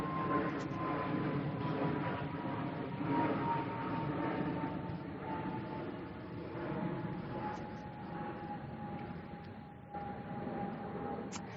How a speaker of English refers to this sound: So church, as we review the Ten Commandments, I'll wait a second for the plane.